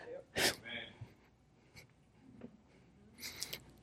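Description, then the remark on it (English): A sudden, sharp sneeze bursts out early, loud and hissy, followed by softer breathy murmurs and a second noisy, sneeze-like gust near the end. “God bless you.”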